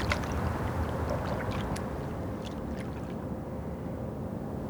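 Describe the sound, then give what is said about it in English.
Water flows in a steady, dense rush with a low, full rumble, broken by a few brief bright splashes and trickles. No voices are heard. “The sound of the water is so soothing.”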